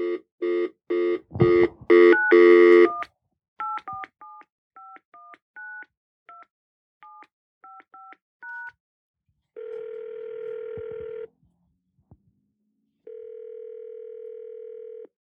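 A phone number is dialed: a quick run of about a dozen short, pitched keypad beeps, followed by two long, steady ringing tones separated by a pause. No one speaks.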